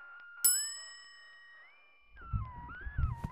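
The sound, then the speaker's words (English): A single bright ding of a desk bell on the desk in the back rings out once, its metallic tone ringing on and fading, over a steady eerie musical drone, followed by low rumbling noises. “It looks like there's a bell on the desk.”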